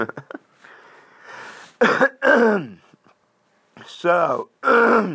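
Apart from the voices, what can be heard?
throat clearing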